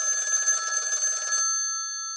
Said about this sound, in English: And at that point, literally a couple seconds later, after feeling that way, the phone rang.